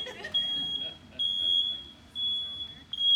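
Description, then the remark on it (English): A smoke alarm shrieks with a piercing, high-pitched tone, sounding in long sustained beeps separated by short gaps, loud, over a low murmur of voices. “The alarms are going off.”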